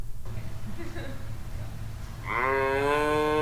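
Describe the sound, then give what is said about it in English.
A giraffe lets out a single drawn-out, cow-like moo that starts partway through and holds steady to the end, loud, after a stretch of low rumbling background noise. “Yeah, I'd call that a moo if that's real.”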